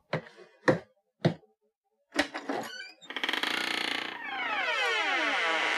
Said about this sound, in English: Well, isn't that a fitting creaky door sound?